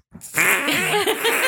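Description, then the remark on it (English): A loud, wet, buzzing fart noise blown with the mouth and a hand to the mouth, sustained for over a second with wobbling pitch, alone after a brief breathy onset. “Is he actually farting or he's making a fart noise like with his hand to his mouth like you just did?”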